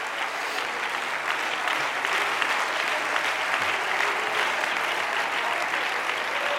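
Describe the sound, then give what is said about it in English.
An audience claps their hands unto the Lord in a steady, dense wash of applause that holds at an even, fairly loud level throughout, with no voices standing out. “I want you to clap your hands unto the Lord, and I want you to lift your voice.”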